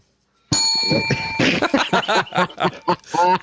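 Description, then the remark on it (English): A bright bell rings once, its clear ringing tone holding for about a second before it's cut off, followed right away by people chuckling and talking. “How does that get the bell?”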